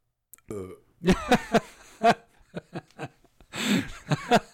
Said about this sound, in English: Is this a burping episode?